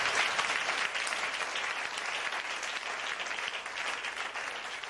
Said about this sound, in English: Clap your hands, oh esteemed people.